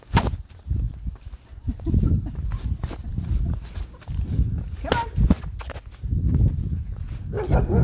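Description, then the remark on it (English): Several dogs behind fences bark in irregular bursts, sharp yaps cutting through a steady outdoor rumble, with footsteps and indistinct voices in the background. “Get that dog, Tia. Get the dogs. Dogs behind fences.”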